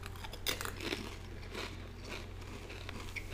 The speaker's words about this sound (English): Just some good chip chewing ASMR.